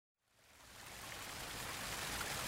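Steady, rushing water fades in after a brief silence and continues as a dense, even hiss, like a stream or fountain flowing, with no voices.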